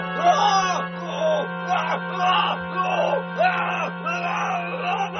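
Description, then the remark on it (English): A man, Voronov, screams in a series of about five drawn-out, wavering cries, loud, rising and falling in pitch, with a steady low hum underneath, beside an atomic octopus after being knocked into a cement lagoon. “Voronov screams as he's savagely untouched by the perpetually lifeless atomic octopus.”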